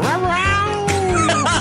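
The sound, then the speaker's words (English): A house cat lets out a loud, drawn-out meow, its pitch wavering, then a shorter rising cry follows right after. “Flophouse house cat.”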